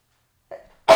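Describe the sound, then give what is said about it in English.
A single sneeze: a brief voiced intake builds into a sudden, loud, breathy burst that ends the moment abruptly, with silence beforehand and no talking. “Bless you, by the way.”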